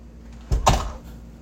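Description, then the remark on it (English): A door is shoved and stopped short by a latch that has been put on, producing two quick heavy thumps with a rattling clack, then quiet background noise. “Now she put the latch on.”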